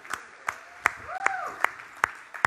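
Steady, rhythmic hand claps ring out about twice a second, like a crowd clapping in unison, with a faint voice rising briefly underneath.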